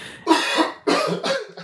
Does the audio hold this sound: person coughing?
yes